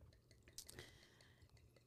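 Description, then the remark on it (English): A peach-flavored Double XL drink being poured from a bottle, with soft splashing and dripping sounds and a few brief glassy clinks over about two seconds, fairly quiet overall. “Pour. We got a sip though.”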